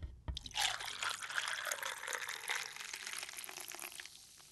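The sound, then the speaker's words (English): Dr Pepper soda poured into a glass over ice for a drink mixed with amaretto, a steady fizzing stream with a brief clink at the start, the hiss and crackle of bubbles continuing as the pour tapers off. “Poured over ice?”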